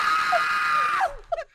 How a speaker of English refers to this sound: he started screaming